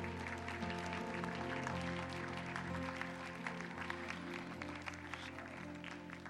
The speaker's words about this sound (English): Let's give the Lord a clap offering tonight.